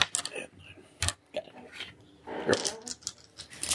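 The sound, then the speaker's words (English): Nine dice rattle and clatter across a hard surface in a burst of sharp, irregular clicks and knocks, moderately loud, with faint voices in the background. “Give me nine dice.”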